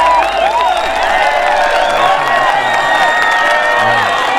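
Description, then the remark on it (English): A large audience cheers and whoops continuously to welcome a guest, with applause and scattered shouts blending into a loud, dense roar that holds steady throughout. “Round of applause for him.”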